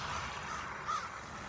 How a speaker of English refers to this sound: And now some crows are flying overhead. And it's just magnificent out here with all this snow, and yet these first buds of spring showing up.